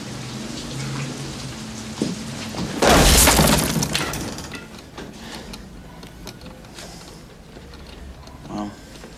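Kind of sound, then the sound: impact, door being kicked down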